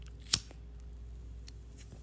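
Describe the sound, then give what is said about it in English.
A single crisp finger snap, a sharp bright click that cuts off instantly, followed by faint ticks over a low steady hum with no talking. “I had to snap my fingers again for this one.”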